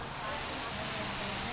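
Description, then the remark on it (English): Fajitas sizzle on a hot plate, a steady, bright hiss with fine crackling that holds at an even loudness throughout the short moment, with a faint murmur of voices underneath. “We have fajitas coming. They're sizzling. Oh, we should get some effects of the sizzle.”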